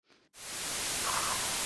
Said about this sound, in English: I'd like to try fidgeting with the radio tuning. You flip around, you search through channels, and you manage to find 4 more stations that are within range, all with varying amounts of static as well.